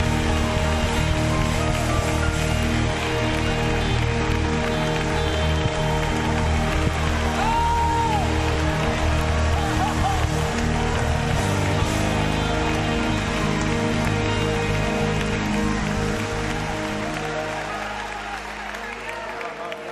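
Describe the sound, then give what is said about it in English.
An audience at a worship service claps steadily for the Lord in sustained, dense applause, with voices murmuring underneath, then gradually softens toward the end. “Somebody lift your voice and clap your hand for the Lord.”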